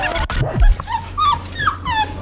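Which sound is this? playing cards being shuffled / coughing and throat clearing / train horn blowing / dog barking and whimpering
dog barking and whimpering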